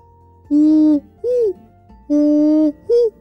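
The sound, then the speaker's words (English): A great horned owl hoots four times in a deep, resonant rhythm, alternating long and short notes with brief pauses between. The calls are loud and clear, with no voices present. “Off in the distance, she could hear the sound of the great horned owl, and that made her fly even faster.”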